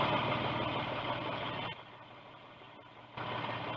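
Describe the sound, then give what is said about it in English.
A car engine idles steadily in the early evening after the car drives up to a boarding house, a low continuous rumble that briefly drops quieter partway through before returning to its earlier level. “Tom Stevens and Helen Benson drive up to the boarding house after their picnic”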